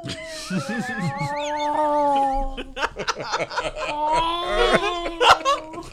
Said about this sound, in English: This is a 2:30 a.m. cat call.